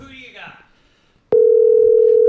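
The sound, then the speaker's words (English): A faint voice murmurs briefly, then a loud, steady phone dial tone from an outgoing call cuts in abruptly and holds as an unbroken single-pitched hum until the end. “Let's see if he answers. Please answer. Please answer. Now it's too loud.”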